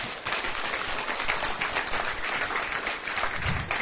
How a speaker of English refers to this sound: Hallelujah, somebody. I thought we'd give a clap unto the Lord.